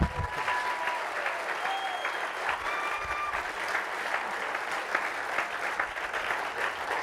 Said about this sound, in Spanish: Y estamos a pocos meses de finalizar esta magnífica obra y prepararnos para ganar a Miami para Cristo y para capacitar, démosle un aplauso a Dios por eso.